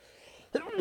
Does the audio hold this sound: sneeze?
yes